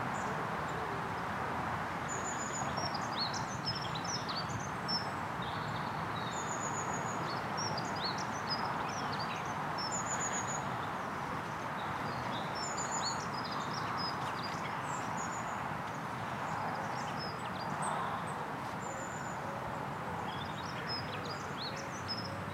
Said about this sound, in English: A flock of redwings.